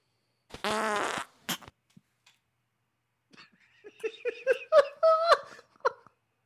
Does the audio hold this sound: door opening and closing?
no